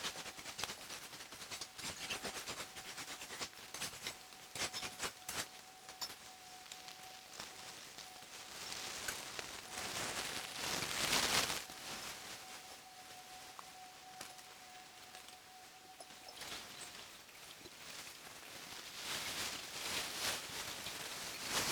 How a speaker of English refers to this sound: Only the sound of knives and plastic bags remain.